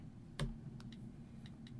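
Scattered clicks of typing on a computer keyboard: one sharper keystroke, then a few lighter, irregular taps over a low background hum, fairly quiet.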